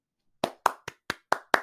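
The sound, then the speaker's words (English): A single person claps for himself six times in a quick, steady rhythm after a moment of silence, each clap sharp and fairly loud with a brief tail. No one speaks. “I'm gonna clap for my damn self.”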